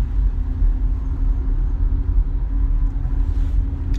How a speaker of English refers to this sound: I'm still in traffic. No one's hit me again yet. Thank God.